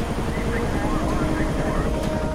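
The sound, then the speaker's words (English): A helicopter drones steadily and loudly, its deep engine rumble and rotor noise filling the whole moment without a break, with a voice talking over it. “12 years flying choppers.”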